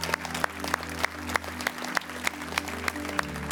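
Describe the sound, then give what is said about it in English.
An audience clapping together in a steady, even rhythm, sharp claps landing about three times a second over a low sustained musical drone, with no talking. “Would you clap with me?”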